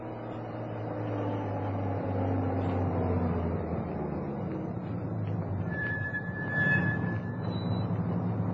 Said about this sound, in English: a police truck entered the front courtyard of the Hernandez house